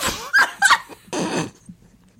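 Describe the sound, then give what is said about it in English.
A couple of sharp barks in quick succession from wild dogs chasing a runner off the course, then a harsh, rasping snarl that fades out, with no one talking. “Len Tao of South Africa was chased off the course by wild dogs.”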